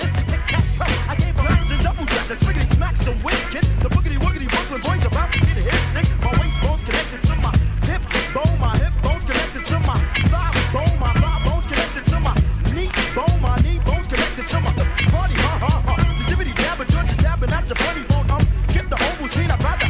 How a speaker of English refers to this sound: This right here is a huge song at the Penthouse Lounge.